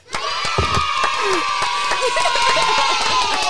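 A crowd bursts into loud, sustained applause for a guest, dense clapping mixed with cheers and a few high whoops, holding at a steady level for the whole few seconds.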